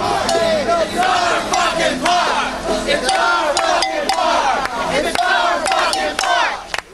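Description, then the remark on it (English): A dense protest crowd on Manhattan's Lower East Side shouts and yells continuously, many overlapping voices rising and falling in loud, chaotic bursts with sharp cries cutting through the din, recorded on a tape recorder. “He documented that night by narrating what he saw into his tape recorder.”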